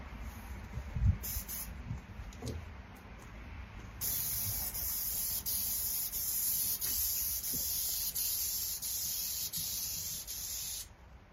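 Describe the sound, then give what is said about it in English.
A paint sprayer set to a fan pattern hisses steadily and loudly for several seconds while spraying the bottom section of a wainscot, starting after a few faint knocks and shuffles, with brief breaks and pulses as the spray is swept back and forth. “I'm just going to spray a little bottom section of this wainscot here, and then, yeah, we'll rock and roll here, everybody.”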